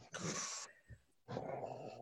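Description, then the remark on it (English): An agitated dog, shut in a fenced-off patio, growls and snarls at a neighbour's cat sitting in the garden, in two harsh, loud bursts with a brief breathy pause between them. “And the dog was in the patio area, which is fenced off, so he can't get into the grassed area.”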